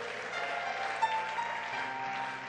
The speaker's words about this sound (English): Somebody clap your hands and say a big amen.